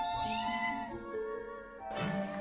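A cat meows in a long, drawn-out cry that rises and wavers, followed by a second shorter yowl, fairly loud with no talking.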